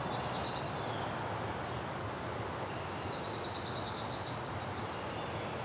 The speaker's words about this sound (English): we may have pine warbler in here. Maybe. Not there, because it fades in and out. It's not a straight even trill, but it has that fade in out quality, and it's in a pine tree. That helps too.